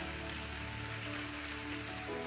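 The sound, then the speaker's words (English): A church audience claps together at their seats for the Lord in a dense, steady wash of applause that holds at an even loudness, with faint sustained musical tones underneath. “Come on, give the Lord a hand clap right there at your seats.”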